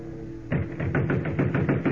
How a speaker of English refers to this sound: we've been pounding that door for 5 minutes and no one answers.